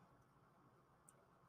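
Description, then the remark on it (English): A short, loud burp from drinking soda pop erupts abruptly at the very end after a stretch of quiet, low background noise, cutting off almost as soon as it starts. “Grab that pop burp and it burns your inside of your nose.”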